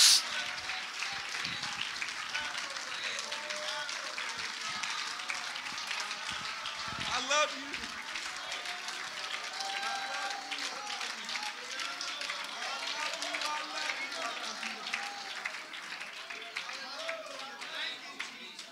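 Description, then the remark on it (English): A church audience claps their hands together to thank God in a dense, continuous wash of applause that holds steady for the whole stretch, with some crowd voices mixed faintly underneath. “Come on, let's clap our hands and thank him.”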